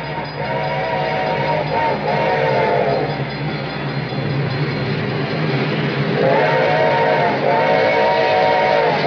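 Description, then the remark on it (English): An approaching train rumbles steadily on a hot, dry afternoon, its bell ringing, as two long, wailing whistle blasts sound, one at the start and another near the end, with no voices. “The train was coming closer. I could hear its bell ringing and the cry of its whistle.”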